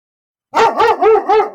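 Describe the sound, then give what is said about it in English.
A female dog named Sassy Pants, recovering with staples, barks four times in quick succession after a moment of silence, sharp, tonal and fairly high-pitched, with no one talking over it. “So I'm having a hell of a time keeping her quiet, as you can tell.”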